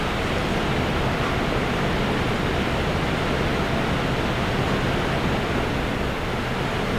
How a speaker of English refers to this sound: Well, boy. It's really storming here.